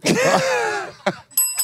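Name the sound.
bell sound effect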